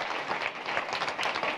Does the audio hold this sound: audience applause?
yes